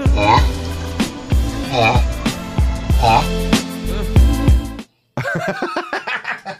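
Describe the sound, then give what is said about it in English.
Loud mating calls of a turtle mating with another turtle: a steady run of rhythmic, groaning grunts with a raspy, voice-like tone, a brief silence near the end, then a few more quick grunts. “That is a turtle making love to another turtle.”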